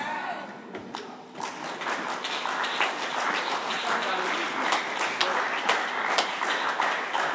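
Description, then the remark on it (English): An audience claps steadily for several seconds, a dense, irregular patter of many hands at a moderate level, never building into a strong ovation. “The way you are clapping is very weak.”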